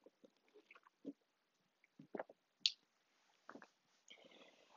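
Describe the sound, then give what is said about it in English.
Quiet sipping of a matcha drink: a few soft slurps and wet swallows spread over several seconds, with small mouth clicks and a faint clink, and no talking. “excuse me, let me take a sip of my matcha.”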